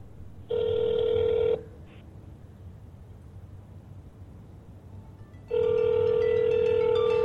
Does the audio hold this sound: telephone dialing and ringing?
yes